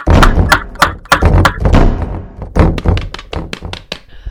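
A hatch in the floor bangs open with a rapid, uneven burst of heavy wooden thunks and thuds, about a dozen loud knocks over a few seconds, with no voices.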